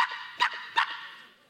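A dog gives three quick, sharp barks about half a second apart, moderately loud, with no voices.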